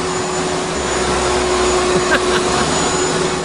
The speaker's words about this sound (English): Well, if you haven't guessed it yet, I'll tell you what it is. It's a vacuum cleaner. Now, the reason I'm playing this is because the story has to do with a vacuum cleaner.